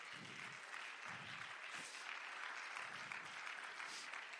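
A crowd claps steadily, a dense wash of many hands, with a few low murmurs and voices mixed underneath the continuous applause, given as a hand clap for their pastors.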